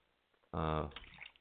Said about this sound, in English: What was that? That was my water bottle. Okay. That's water bottle.